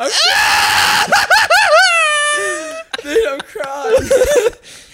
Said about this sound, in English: just screaming. He's not really laughing.